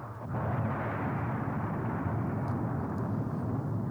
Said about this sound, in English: Very original explosion.